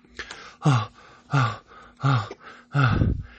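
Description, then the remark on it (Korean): Heavy, voiced panting: four loud, ragged breaths in a steady rhythm, each a harsh gasp with a strained vocal edge, the last one longest and roughest, from a child who has just run uphill without stopping to the top of a hill in a forest. “거친 숨소리가 숲속을 울렸어.”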